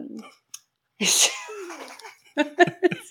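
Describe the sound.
A single sharp, harsh cough, the fourth from the same person, bursts out loudly, trailing into a breathy voiced tail, followed by a few short choppy bursts of laughter.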